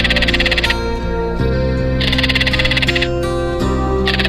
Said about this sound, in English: The crested caracara. Today's Talkin' Birds featured feathered friend.